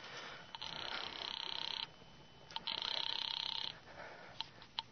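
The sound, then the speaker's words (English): A telephone rings twice as a call is placed from a phone booth in a drugstore, each ring a rapid, buzzing trill lasting over a second, separated by a short pause. The rings are fairly loud over a faint background hiss, with no voices. “I went to the phone booth and called my sister Lil.”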